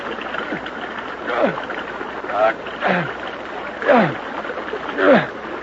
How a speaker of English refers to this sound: Don't kick the water so hard. Keep your feet together.